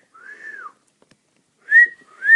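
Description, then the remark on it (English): A person whistles loudly, one arching note, a brief pause, then two sharp rising whistles that start a classic wolf whistle. No one speaks. “That powerful whistle was by me and not by Caitlin.”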